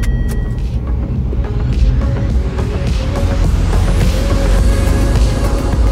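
An old-fashioned sports car engine roars loudly as it is driven in sport mode down the Pacific Coast Highway, its pitch climbing steadily as it accelerates over a deep, continuous rumble, with no voices.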